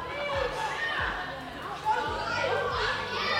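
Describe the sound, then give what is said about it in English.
A room full of children, students arriving at VBS, shouting and screaming over one another in a steady, loud clamor of overlapping high voices, with a few dull low thumps underneath. “We can hear them all screaming right now.”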